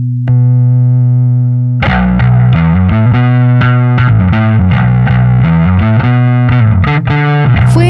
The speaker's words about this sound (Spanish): además de añadirle un elemento extra, la distorsión de un pedal Fuzz llamado Tone Bender, uno de los primeros pedales de efectos en ser construidos.